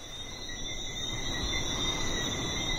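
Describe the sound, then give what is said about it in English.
A dense night chorus of small frogs on a Caribbean island, a steady high-pitched trilling and peeping that fills the air continuously, with a soft low rumble of ambient noise underneath and no voices. “There's just the sound of the breeze and these little frogs that come out at night and chorus all over the island.”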